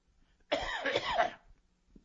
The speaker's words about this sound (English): I'm going to cough up a lung over this crap.